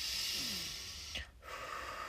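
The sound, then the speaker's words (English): A deep, airy breath drawn in, a brief pause, then a long breath let out, steady and fairly loud, with no talking. “Do some deep breathing.”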